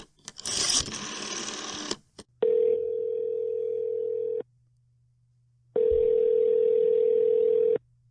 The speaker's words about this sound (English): Just a second here while I dial the phone. I've been meaning to upgrade my phone, but yeah, who has the time?